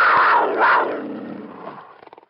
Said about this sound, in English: The snow leopard roared its frustration at the woman heading for the door. The sound was deafening.